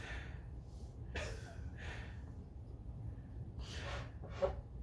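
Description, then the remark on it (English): A man's heavy, labored breathing after physical exertion comes in four or five rough, airy puffs at an uneven pace, quiet over a steady low rumble, with no talking. “If you guys turn up your volume, you're going to hear this guy breathing heavy.”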